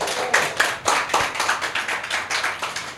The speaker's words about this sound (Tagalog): Amen? Pwede ba natin palakpakan ng Panginoon?